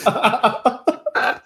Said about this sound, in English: starts with a persistent cough just as we start mentioning coronavirus.